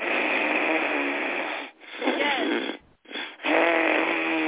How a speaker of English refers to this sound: No, Ujjayi breath is the one where you can hear it. You're breathing through your nose, and I'm going to be as loud as I possibly can.